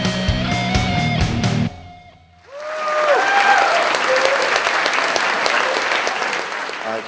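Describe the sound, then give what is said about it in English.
A few seconds of music cut off, then loud, steady applause from a large crowd at a talk swells up and continues, with a couple of whistles and cheers rising out of the clapping. “This, I think, is probably the largest crowd that I've spoken to before.”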